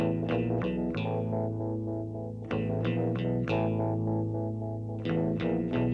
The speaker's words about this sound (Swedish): Så känns det varje gång jag lyssnar på den här låten. Och låten är 3 minuter 26 sekunder och det räcker med första tonen för att jag ska åka iväg.